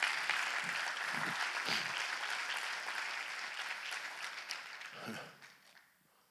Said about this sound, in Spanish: Digan amén, dale un aplauso si lo crees.